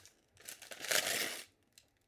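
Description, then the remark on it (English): Rip of shiny wrapping paper as a present is unwrapped, one crinkly tear lasting about a second that swells in the middle, followed by a faint rustle as it settles. “I also love shiny wrapping paper.”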